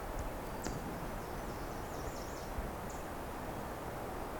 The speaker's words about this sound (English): The black and white warbler vocalizing, singing.